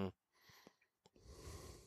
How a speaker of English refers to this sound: I was waiting for you to cough.